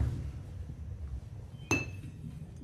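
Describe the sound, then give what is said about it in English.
A single bright glass clink rings out sharply as a drink is poured into a glass, with a brief shimmering tail, over a steady low background rumble. No one speaks. “Pour yourself a glass, pal.”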